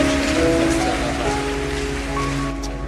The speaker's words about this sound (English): We receive your healing, and we receive it with thanksgiving and with a clapping of hands.